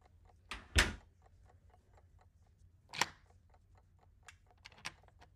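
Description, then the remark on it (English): A door shuts with a solid thud, followed by a second heavy knock and a few sharp metallic clicks like a lock turning, with a faint ticking in between. “Sure they locked the door.”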